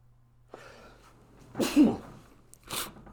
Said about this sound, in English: Yeah, you know what they say. When you sneeze when you're talking, you're telling the truth.